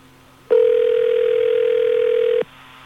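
A single ringback tone from an outgoing phone call to the radio station Kiss 106, one steady electronic buzz lasting about two seconds, with a faint low hum before and after and no talking.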